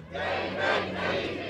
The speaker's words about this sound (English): People packed each street corner of the intersection of Breckenridge Lane and Shelbyville Road in St. Matthews. They hold up signs and chant the names of two Louisvillians shot and killed by law enforcement, Breonna Taylor and David McAtee.